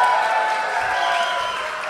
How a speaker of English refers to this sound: All right, so all in favor of laser? Clap.